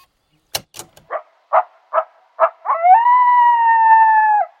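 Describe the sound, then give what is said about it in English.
A coyote in Yellowstone gives a few sharp yips in quick succession, then breaks into a long, steady, wavering howl that holds for nearly two seconds, clear with no other sounds. “If you said coyote, you're right.”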